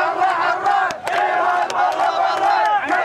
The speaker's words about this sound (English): Demonstrators could be heard shouting, "Iran out, out, Iraq is free," during intense clashes with security forces.